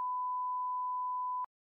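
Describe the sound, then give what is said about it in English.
A single steady censor beep covering a spoken credit card number, a pure electronic tone held for about a second and a half at constant loudness before cutting off abruptly, with no voices audible around it. “make sure they beep out all of my sensitive credit card information.”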